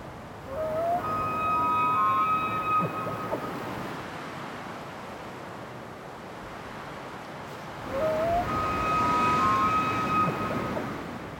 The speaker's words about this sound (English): I believe you're on a ridge top or near the quite a conspicuous sound of wind. And over the top of that, the higher pitch of a bugling elk, which is one of the most remarkable sounds in nature.